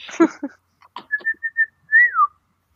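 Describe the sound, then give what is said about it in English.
A brief noisy burst, then a man whistles bird-like: a few short, evenly spaced piping notes followed by a longer note that swoops up and glides down, clear. “That bird looks an awfully lot like an old man. Is he whistling at you?”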